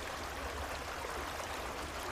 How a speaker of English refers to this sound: It has the sound of the creek behind my cabin in the background to help you relax and let go a little more deeply.